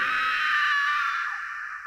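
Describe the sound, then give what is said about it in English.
A woman's shrill, high-pitched scream, held as one loud, piercing cry for about two seconds, easing off slightly toward the end. “She noticed a chain attached to one of its deer-like hooves and let out a high-pitched scream.”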